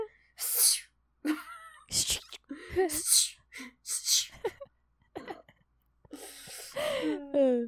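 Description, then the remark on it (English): A voice imitates a snake sneezing with a series of sharp hissy bursts and sneezy snorts, spaced irregularly, ending in a few breathy vocal squeals. “What does a snake sound like when it sneezes?”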